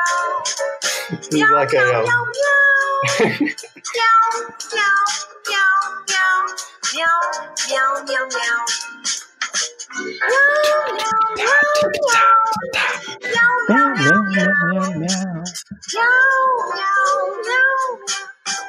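A cat meows and yowls almost continuously, its drawn-out, wavering cries rising and falling loudly, with brief pauses between calls.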